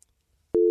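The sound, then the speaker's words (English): After a near-silent stretch, a loud, steady telephone line tone cuts in abruptly and holds at one flat pitch until the end, with no voices. “Frank sounded a lot like a dial tone.”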